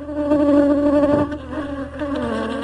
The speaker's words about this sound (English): Awanga Timote, popularly known here at Matom as Papa Miel, translated from French as Papa Honey, moves colonies of honeybees from one of his 30 beehives to the other with his bare hands.